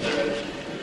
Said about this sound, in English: Yeah, but this is a real train. It's a real train, yeah. Though. It's like this is genuine.